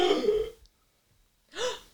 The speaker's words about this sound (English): What are you all gasping about?